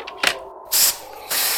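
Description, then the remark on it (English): A couple of quick mechanical clicks, then two steady bursts of gas hissing from a gas canister being used to make orangeade, each lasting a fraction of a second, fairly loud and with no one talking. “Be a good chap and pass the gas canister, will you?”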